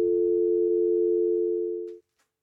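A steady, loud telephone dial tone drones continuously for about two seconds, then stops abruptly, followed by a couple of faint clicks in the quiet.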